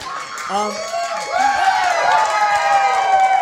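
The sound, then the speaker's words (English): A live audience at the end of a show cheers and whoops loudly, clapping for themselves, with scattered clapping mixed into the noise, swelling after the first second and holding steady to the end. “Clap for yourselves.”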